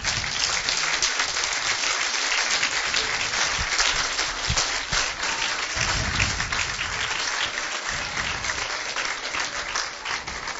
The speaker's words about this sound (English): Could we give them a hand clap?